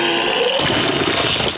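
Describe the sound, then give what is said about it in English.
A vomiting sound effect: a loud, gurgling retching noise, a strained throaty heave that turns into a harsh, splashing rush for about a second and a half, with no talking. “now the vomit sound effect has come out”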